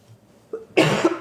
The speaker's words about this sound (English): Mom's coughing. We'll edit that out. Everything is fine. Is there a cough button on this thing? De-cough.